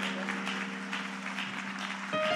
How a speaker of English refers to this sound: Let's give a hand clap of the Lord.